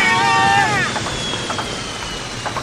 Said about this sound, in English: will you look at the size of that big drilling machine that just came through the wall? Yeah, it has a big old drill on the front, very much like that vehicle in the movie The Core.